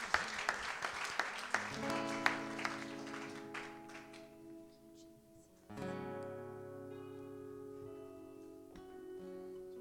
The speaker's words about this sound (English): Come on, if it is well within your soul, give the Lord a hand clap of praise this morning.